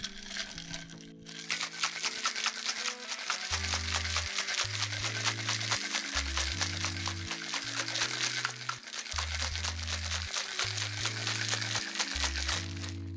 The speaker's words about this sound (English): Then we're going to put our lid on here and then shake well for about 20 seconds.